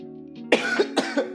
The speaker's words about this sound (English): Your boy's still coughing out here.